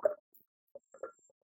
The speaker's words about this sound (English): Sip of water. Hold on.